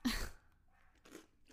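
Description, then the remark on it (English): Loud crunching of crispy marshmallow cereal being chewed, with three sharp bursts: a big crunch at the start, then two shorter ones, separated by brief quiet gaps. “Oh, that is a big crunch.”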